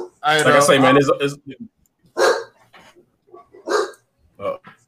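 Dogs bark: a drawn-out, yowling bark, then a few short, sharp barks spaced about a second apart.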